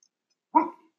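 A single short dog bark rings out after a moment of silence, clear, with nothing else around it.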